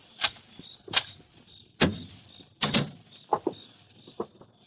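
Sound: door being opened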